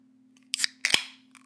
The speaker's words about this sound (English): And I'm going to go ahead and crack open this drink here. Got to do the 3-tap rule to avoid any fizzy explosions. 1, 2, 3. And here we go.